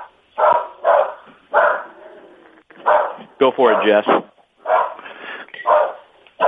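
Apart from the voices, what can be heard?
small dog barking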